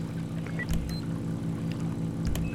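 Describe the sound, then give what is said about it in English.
The engine of a marine vehicle enforcement HP boat runs steadily with a low, throbbing drone and a continuous hum, fairly loud throughout with a couple of brief surges, and no voices. “Alright, I have the HP boat. Here we go.”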